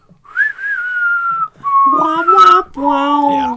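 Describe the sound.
The theme melody from the film The Good, the Bad and the Ugly, whistled: a clear sliding high phrase, then two lower, buzzier held notes that sound partly hummed or sung, as a voice imitates the tune.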